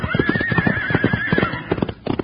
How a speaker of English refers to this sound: He's got that horse so spooked up it doesn't know what it's doing. I don't like jaspers that mistreat horses.